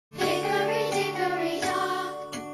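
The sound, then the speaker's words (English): A bright, tinkling 'Hickory Dickory Dock' premium audible clock chime plays a short melody, with several ringing notes sounding one after another, fairly loud, with no voices. “Hickory Dickory Dock.”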